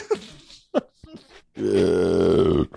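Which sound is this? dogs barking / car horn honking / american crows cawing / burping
burping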